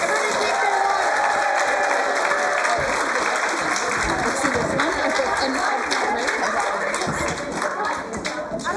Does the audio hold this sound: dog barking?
no